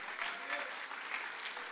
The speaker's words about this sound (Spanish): Mire, esa porción se merece un aplauso.